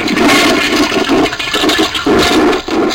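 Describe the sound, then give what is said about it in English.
A toilet flushes loudly, a rushing, gurgling swirl of water that surges in uneven waves for a few seconds with no voices over it. “And our next one is, should this use the flushing or... Sony. Flush. We should flush this one.”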